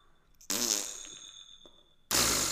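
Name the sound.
fart noise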